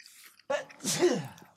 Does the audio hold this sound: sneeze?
yes